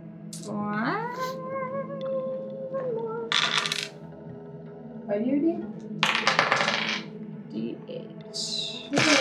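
Dice, rolled as sleep dice, clatter and rattle across a tabletop in several short, sharp bursts, with sing-song voices and murmuring in between.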